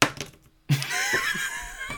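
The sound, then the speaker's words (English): A model is knocked over and strikes a hard surface: a sharp knock, a brief pause, then a louder clattering impact followed by scraping, rattling noise with voices reacting. “If it was a metal model that had just been glued together, you probably would have knocked a piece off at that point.”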